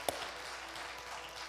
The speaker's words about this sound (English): So can we clap for those people that said yes to Jesus? Can we just say, yeah.